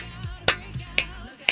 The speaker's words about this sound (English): I'm clapping.